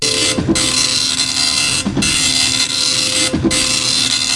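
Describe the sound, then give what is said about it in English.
A dot matrix printer rattles steadily through print passes, its continuous buzzing screech broken by three brief carriage-return pauses at regular intervals. Loud, no voices. “Micro dot printer.”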